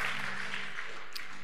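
A church audience claps together for the Lord after a prayer, in a steady, dense wash of applause that holds evenly for about a second and a half, fairly soft overall, with no voices standing out.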